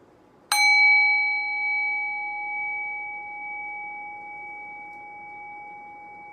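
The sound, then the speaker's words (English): A meditation bell, a singing bowl, is struck once, its bright metallic tone ringing out clearly and fading slowly over several seconds into quiet, with no voices present. “Rest your awareness on the sound of the bell. Allow the decay of the bell to guide your mind into silence.”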